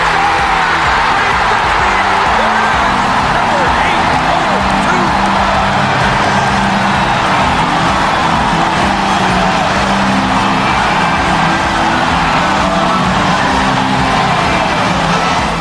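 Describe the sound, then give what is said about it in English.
A loud, sustained crowd ovation for Wayne Gretzky at an ice hockey arena, thousands of voices roaring and cheering without a break for the whole stretch, a dense wall of sound with scattered shouts rising out of it. “One of the best ovations I've ever had, so I have to say that I was pretty tickled.”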